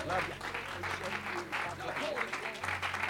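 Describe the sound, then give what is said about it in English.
A church audience applauds, dense and continuous clapping from many hands filling the whole stretch, with a low sustained musical hum running underneath. “Well, while you're clapping your hands, lift your voice to Jesus and love him.”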